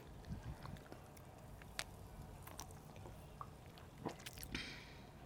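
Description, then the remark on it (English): Soft sipping of a mango cocktail: quiet wet slurps and small mouth clicks scattered over a few seconds, with a brief airy swish near the end and no talking. “Well, I guess we can first cheers. Sip. Cheers.”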